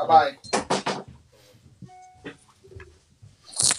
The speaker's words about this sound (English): Hold on one second, gentlemen. I got to close my door. I got the attack of the pets.